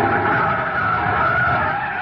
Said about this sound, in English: Jam on the brakes.